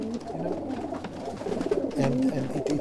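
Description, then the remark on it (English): Several racing pigeons, being readied for the upcoming racing season, coo softly and continuously in their loft, overlapping low, throaty warbles with a steady murmur of birds and faint rustling. “Riyad comes in here every day from 4:30 a.m. to feed his pigeons”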